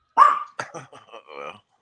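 dog barking

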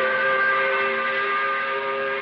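five o'clock whistle blowing

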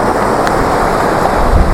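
ocean waves and surf

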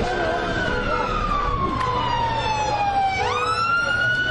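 fire engine siren

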